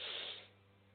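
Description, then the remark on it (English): A single airy breath drawn in through the nose as part of a breathing exercise, hissy and fairly soft, fading after about half a second and leaving only a faint low hum. “Inhale.”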